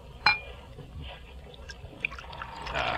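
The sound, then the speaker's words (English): A glass gives a sharp clink, then wine is poured into it with a soft, rising splash and trickle. Fairly quiet, with no talking. “Your glass”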